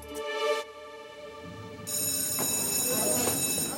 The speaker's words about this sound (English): Finally, that recess bell couldn't come soon enough.